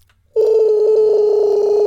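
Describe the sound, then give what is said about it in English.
After a brief silence, a loud, steady telephone tone cuts in abruptly and holds continuously as a man phones a secretary, with no voices present. “And he calls up the secretary.”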